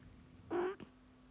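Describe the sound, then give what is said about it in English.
A sleeping cat, lightly touched on the belly by hand, gives a single short chirping trill, followed by a tiny second chirp, soft and quick, with no talking. “And also, whenever she is sleeping and I'm lightly putting my hand, let's say on her belly or something like that, she always makes a sound.”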